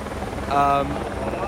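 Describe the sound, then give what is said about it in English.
A helicopter drones steadily overhead at a men's road cycling race, about 120 km from the finish, its rotor chop forming a continuous low rumble that swells briefly louder at mid-clip, with no talking over it. “And it seems, here we go, here's the helicopter.”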